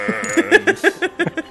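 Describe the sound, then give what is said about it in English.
A tremulous sheep bleat with a rapid, wavering pulse from a polymorph spell turning a skeleton into a sheep during the opera event in Karazhan in a video game, heard on its own with no talking, over a brief low hum that drops away partway through. “Sheep the skeleton.”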